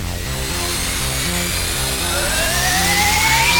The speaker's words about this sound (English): Firing thrusters.